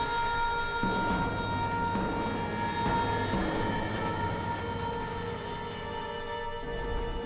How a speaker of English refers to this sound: So here we are on the train, and basically the point of this cutscene is to show you who all worked on the game, which is obviously very important.